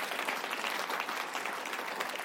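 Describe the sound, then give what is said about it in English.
A crowd claps steadily, a dense, even wash of many hands applauding at moderate volume throughout, with no pauses or voices rising above it. “I think that deserves an incredible round of applause.”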